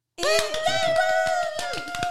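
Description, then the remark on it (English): Cheering and clapping: a sustained, high-pitched whoop holds steady for about two seconds while sharp hand claps patter irregularly underneath, loud throughout. “Can we give them another cheer and a clap?”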